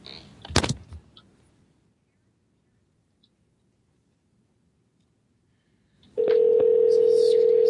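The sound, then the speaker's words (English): A few handling clicks, a quiet pause, then a loud, steady telephone tone starts abruptly and holds unbroken to the end, like a phone line dialing out and ringing. “Yeah, let me, you guys here, I'll call something for you.”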